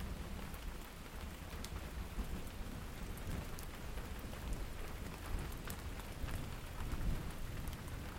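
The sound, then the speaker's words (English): Steady rain pours down with a constant hiss and scattered drop patter, while low, soft thunder rumbles underneath throughout. No voices are present. “So, sweet rain, gentle thunder, thank you so much.”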